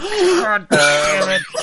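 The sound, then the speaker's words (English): A man's voice strains through a drawn-out, groaning cough, with a sharp burst partway through followed by a long, rasping vocal effort, loud. “My man's coughing up his fucking.”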